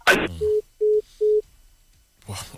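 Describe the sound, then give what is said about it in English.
A telephone dial tone after a dropped phone call sounds as three short, steady electronic beeps, evenly spaced and fairly loud. A brief noisy click comes just before them, and a rustle follows. “Well, sorry about that. We lost our call.”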